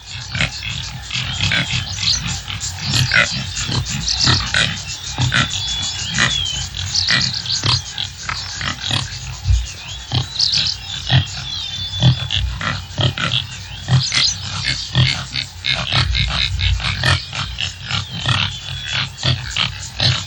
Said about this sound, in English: When I first heard that, I thought, okay, that is a pig. It certainly sounds like one, but it's not. This animal is called a topi. They're very social and very swift antelope species creatures, subspecies creatures.